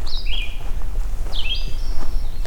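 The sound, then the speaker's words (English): Two short, high, slurred magnolia warbler song phrases carry faintly from a distance, separated by a pause, over a low rumble of background noise; no one speaks. “It's a distant magnolia warbler too.”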